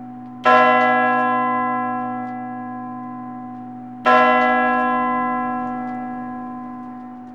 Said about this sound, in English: The clock just kept tolling out the hour, on and on, 12 ringing strokes in all, while they stood and looked anywhere but at each other, while Crow collected himself.